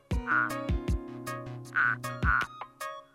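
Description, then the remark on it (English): A male turtle frog, out of its burrow in spring, gives its mating call to potential mates: a fairly loud series of deep, buzzy croaks with harmonic, nasal tones, repeating in an uneven rhythm with no talking. “In the spring, male turtle frogs will emerge from their burrows to call to potential mates.”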